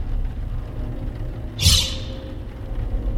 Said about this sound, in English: As you move, oh, careful. You knocked over a stack of books.